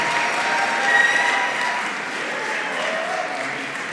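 A crowd of wedding guests claps steadily, a dense, even wash of many hands that holds its loudness for several seconds with no voices standing out.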